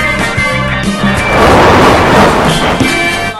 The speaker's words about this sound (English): I knocked over a bunch of shit.